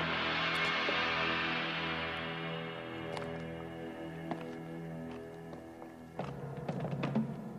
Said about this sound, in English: Kicking the door to the Oval Office in.